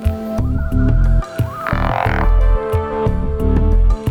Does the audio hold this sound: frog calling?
yes